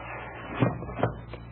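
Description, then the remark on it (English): A sliding door in the wooden pedestal of Ajab Jr., a chess-playing machine with machinery inside, is pushed open, giving three short knocking clunks spaced a few tenths of a second apart over a steady low hum. “Now, see, I will slide back the door here in the pedestal.”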